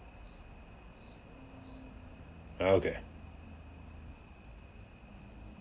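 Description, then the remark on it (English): A cricket chirps steadily throughout, a thin high trill with a few slightly louder pulses early on; a person briefly says a single word midway. “Where are you, cricket?”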